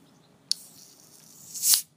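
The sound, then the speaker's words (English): A can of The Garden Brewery Session IPA (4%), from Croatia, cracks open with a sharp click, then a bright fizzing hiss swells and peaks before cutting off. No one speaks. “Opens with a nice hiss.”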